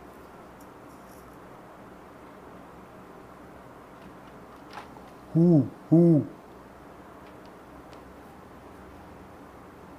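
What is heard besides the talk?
owl hooting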